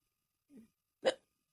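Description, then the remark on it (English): A single sharp hiccup, preceded by a soft low intake, in an otherwise quiet setting with no talking. “Also, you hiccup well, so.”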